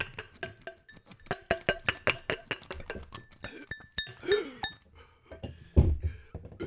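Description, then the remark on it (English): Real crystal glasses clink together over and over in a quick, uneven flurry of bright, ringing taps, fairly loud, during a toast, before trailing off into a few softer knocks and shuffles. “Yeah, that's real crystal glass.”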